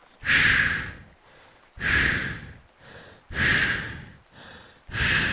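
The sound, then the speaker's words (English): Heavy, raspy breathing of skeleton creatures: four loud, hissing exhales alternating with quieter, shorter inhales in a slow, steady rhythm, with no talking. “They make these heavy breathing sounds.”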